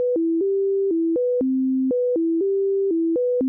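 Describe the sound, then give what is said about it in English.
Clean electronic tones step back and forth between lower and higher pitches in a short repeating pattern, a simple set recreated by Deutsch in a sound perception experiment and sent to the left ear, played twice over a few seconds at moderate volume, with no voices. “To do this, Deutsch recreated a simple set of tones alternating between low and high and sent it to the left ear.”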